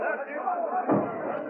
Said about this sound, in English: They heard the splintering crash of the ram as it was swung by sturdy arms.